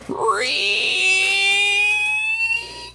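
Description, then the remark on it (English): A voice imitates the rusty hinges of a gate creaking as the gate is pushed: a single long, strained squeal that rises sharply in pitch, then holds a loud, thin, whining tone for a couple of seconds before cutting off. “All right, so you start pushing on the gate, and the hinges are pretty rusty, and you just hear...”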